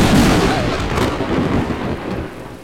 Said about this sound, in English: Thunder, as in the sound that accompanies lightning. That's ridiculous. Light doesn't make a sound, it makes blinks.